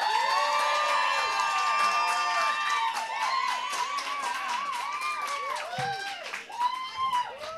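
A live crowd erupts in loud, sustained cheering and shouting, many high-pitched voices whooping and screaming over each other for several seconds without a break, as the audience votes by making noise for Mason King as October champion.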